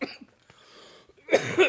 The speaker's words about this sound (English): That's why I'm coughing. I'm smoking ashes.